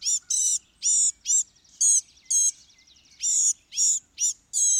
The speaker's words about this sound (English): Its song is a lip-sing, chattering, incoherent warble, now faintly reminding one of the goldfinch, now of a miniature catbird, then of a tiny yellowhammer.